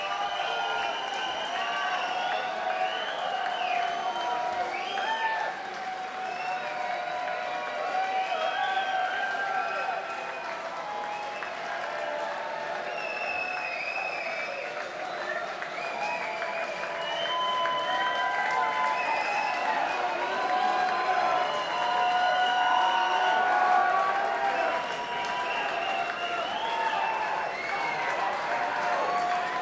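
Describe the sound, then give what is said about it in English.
A concert crowd of about 700 people at the 9:30 Club applauds for an encore after a set of almost two hours, steady clapping mixed with cheers, whoops and whistles that holds for the whole stretch and swells a little louder near the end. “About 700 people here at the 9:30 Club tonight. And everyone's waiting for them to come back, even after having played almost 2 hours.”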